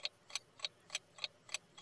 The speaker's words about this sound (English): So I've got to let the timer run down. Yeah, I know you do, mate. Yeah, so otherwise, next time it'll only give you how many seconds are on the clock.